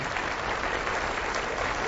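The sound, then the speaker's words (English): A crowd applauds steadily, many hands clapping at once in a dense, even wash of sound that stays loud and unbroken throughout, with no voices standing out. “Hey, you can clap for that.”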